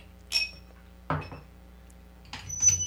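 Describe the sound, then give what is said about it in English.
Glass squeaks and clinks as a bottle of Stone Scorpion Bowl beer is opened: three short, sharp bursts with thin ringing tones, spaced over a few seconds against a quiet background hum. “That's squeaking. I didn't like that at all. It's what cuts the glass there.”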